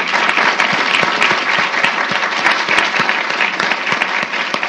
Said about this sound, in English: All right, that's going to have to be the last word. Please give a round of applause to our great panelists.